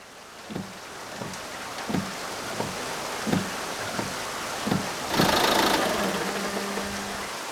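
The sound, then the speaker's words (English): An old Ford car engine cranks with a slow series of about seven rhythmic chugs, then catches with a louder roar and settles into a steady, low idling rumble, with no talking. “I'll start my old Ford and be over as fast as it can coast there.”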